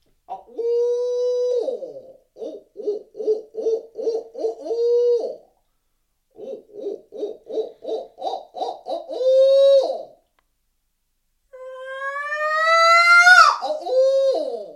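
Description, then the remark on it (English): Two rhythmic series of owl-style hoots, each ending in a drawn-out wavering note, give way to a loud, rising, shrill scream. It is a person's voice imitation, not a real owl, used while hunting to get a bird to gobble. “And I'll go through a couple hoots, and then we'll go to that.”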